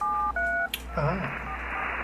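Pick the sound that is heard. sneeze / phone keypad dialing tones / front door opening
phone keypad dialing tones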